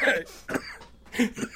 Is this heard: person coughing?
yes